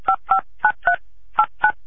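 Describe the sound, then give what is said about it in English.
Six short telephone keypad tones beep in quick succession as someone dials a phone call, grouped in pairs with a brief pause in the middle, each a clear two-pitched electronic chirp with no talking. “God, I'm calling Josh, all right?”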